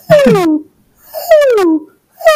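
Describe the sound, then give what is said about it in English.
Bat calls, shifted to a frequency audible to human ears: three loud, harmonic-rich tones that each sweep steadily downward in pitch, separated by short silences, with the third cut off at the end. No talking. “You can actually hear a lot of species have this like really gorgeous sort of like downward sweeping.”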